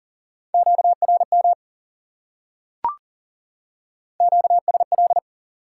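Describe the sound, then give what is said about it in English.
Morse code in a steady mid-pitched tone spelling the word "interference", keyed in two quick bursts of short and long beeps separated by a pause, with a single sharp click in the gap. “Interference.”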